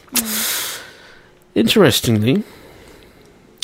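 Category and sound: human body sound, yawn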